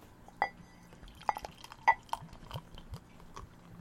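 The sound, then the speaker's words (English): Glassware clinks sharply a few times, followed by the soft, bubbly trickle of nitrogenated dark beer being poured into a glass. No one speaks. “That's a nitrogenated top you got there. Mm. And the pour.”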